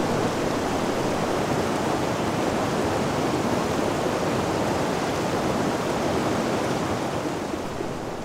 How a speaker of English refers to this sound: I moved from the top edge of the canyon down to its bottom, microphone positioned a meter away from the fast-flowing river, entering a narrow, low gorge.